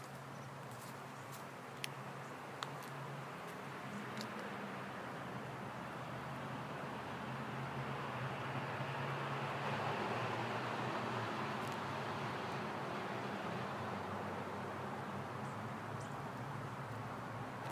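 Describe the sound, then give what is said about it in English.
Trucks pass on a road in a steady, broad rumble with a low droning hum underneath, swelling slightly in the middle before easing off. A few faint, brief ticks sound early on. “I wish the trucks were quiet.”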